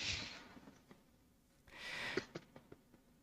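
Two quick, breathy nasal sniffs, fairly soft, separated by a short pause, with a few faint clicks and rustles between them and no talking.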